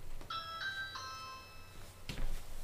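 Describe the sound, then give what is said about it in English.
A bright electronic Ring video doorbell chime, set off by pressing the doorbell button, plays three quick ringing tones that hang and fade, followed by a short burst of rustling noise. The chime is clear over a low background hum. “I mean, basically, if you watch my phone, all that I have to do is, I mean, it sounds like I'm giving a test demo to the people at Ring, but all I have to do, press the button.”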